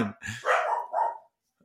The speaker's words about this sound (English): Dogs. They haven't ruined a podcast for a while, have they? And they're back. they're back in action.